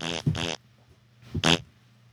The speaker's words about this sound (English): What was the fart noises? That's you being farty. It's not me.